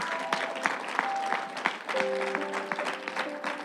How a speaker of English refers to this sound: Praise God. Let's look up, church, and let's give the Lord a hand clap.